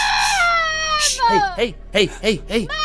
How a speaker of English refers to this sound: Hey, stop, screaming, stop fucking screaming. Oh my God.